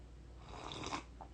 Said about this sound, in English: I'm gonna have a sip of vanilla caramel tea.